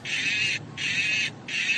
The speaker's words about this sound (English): We admit that electronic mooing is a bit unsettling, but it's the reason behind the mooing that has people a little perturbed.